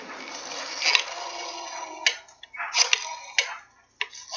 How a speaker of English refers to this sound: That's a rotary phone. See, you did it right. You didn't just say dial phone or telephone. You actually got it right. Rotary phone.